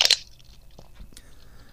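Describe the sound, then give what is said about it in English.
A single loud, crunchy bite into ice cream with cookie pieces, a sharp burst at the start followed by a few faint chewing clicks and soft mouth sounds. “Cookie pieces make it really crunchy.”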